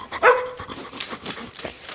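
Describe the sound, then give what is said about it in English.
Roger the golden retriever gives one sharp, loud bark near the start, followed by a couple of softer, higher yips and whimpery sounds trailing off over the next second or so. “Your Honor, I like to call my witness, Roger the Golden Retriever, to the stand.”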